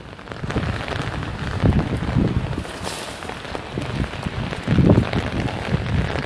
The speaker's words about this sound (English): I'm trying to avoid it so I don't have to jump over it. I might have to jump over it right now though. Can you hear the water? That's the water running down the street that I'm trying to avoid, but it's really hard.